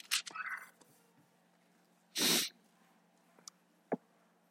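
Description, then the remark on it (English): A single loud nose blow by a speaker during a sermon, a short rough honk of air, preceded by soft breathy sniffs and followed by a couple of faint small clicks. “You hear me blow my nose.”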